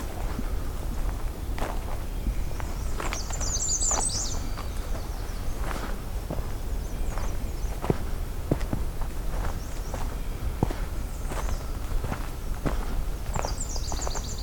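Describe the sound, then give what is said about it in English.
A Nashville warbler sings two brief high-pitched trilled phrases, one early and one near the end, early in the morning, over steady crunching footsteps and low outdoor rumble. “Nashville warbler. Seabit, seabit, see, see, see, see, see.”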